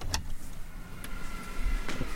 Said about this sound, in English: There's actually some construction happening, which you couldn't hear in there, so that's great.